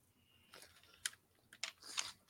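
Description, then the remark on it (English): Irregular bursts of typing on a computer keyboard that is acting up, with sharp clicking keystrokes, fairly quiet, a handful of taps and short flurries over a couple of seconds with no voices. “So my keyboard's acting up here.”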